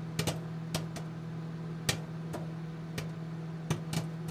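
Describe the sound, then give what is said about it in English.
Sharp, irregular crunches of popcorn being chewed, with short pauses between bites over a low steady hum; no one speaks. “Let's go each individually buy a ticket and watch this film in the theater and eat some popcorn.”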